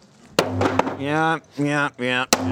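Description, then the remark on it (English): Sharp, heavy chops strike a wooden table, sending chunks and shrapnel of wood flying, three cracking blows spaced unevenly, while people talk and exclaim loudly in the gaps between them. “You're chopping it.”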